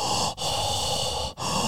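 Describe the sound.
A voice imitates heavy, raspy mouth breathing as heard on the other end of a telephone, a steady breathy rush broken by two brief pauses between breaths, with no words spoken.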